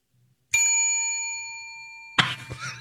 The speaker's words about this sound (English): Yeah, I didn't have to ring the bell as much, yeah.